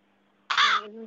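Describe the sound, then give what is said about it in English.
A single loud, harsh crow caw bursts out inside a room the crow has entered through a broken window, a raspy, broad call lasting under half a second, followed by a faint lingering tone. “There's a crow in my room now.”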